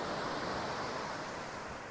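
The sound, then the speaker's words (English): Ocean waves on a beach in Aptos, California, heard as a steady, broad rushing wash of surf that holds an even level for the whole two seconds, with no voices. “This beach in Aptos, California is the closest that I'll get to narwhals today.”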